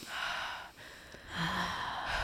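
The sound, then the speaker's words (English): A slow, audible breath in through the nose followed after a short pause by a longer, airy breath out through the mouth, with no talking. “Just through the nose, out through the mouth.”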